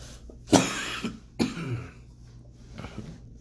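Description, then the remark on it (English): A harsh coughing fit from a person who took a breath wrong and choked: two loud, explosive coughs about a second apart, each trailed by smaller hacking coughs and throat clearing, with no talking. “Had a little cough break.”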